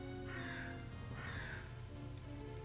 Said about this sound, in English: Whoa, crows, huh? Oh yeah, crows. I had to open the window because I'm like so tired. I think I'm like oxygen deprived or something. Leave it open. I mean, not for the oxygen, for the crows. Get some crows in this podcast. There's always crows,